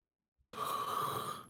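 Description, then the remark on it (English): A person lets out a long, drawn-out yawn lasting about a second, breathy and voiced with a steady tone, on its own with no talking. “Damn, …, too much yawning.”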